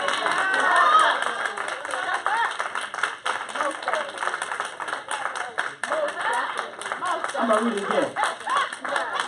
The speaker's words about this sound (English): See, look, y'all see me? Y'all see how they responded to you? Oh, and they're still clapping.